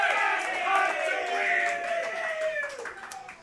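A crowd at a live broadcast from the track roars and cheers, many voices shouting together in a sustained, dense swell that holds steady loud for a few seconds before easing slightly at the end.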